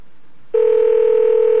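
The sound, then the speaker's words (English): A steady electronic telephone tone cuts in abruptly after a moment of near silence and holds loud and unbroken to the end, as a call is placed again after the previous caller was lost. “Lost the caller, no problem. I'll click and connect again.”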